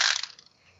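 A quick burst of hard, clattering rattles as eleven dice are rolled across a table for a climbing check, loudest at the start and trailing off into a few scattered clicks within a second.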